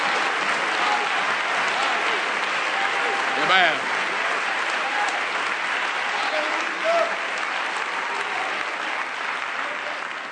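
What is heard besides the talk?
audience applauding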